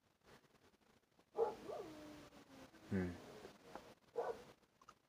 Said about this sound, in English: Yeah, my dog.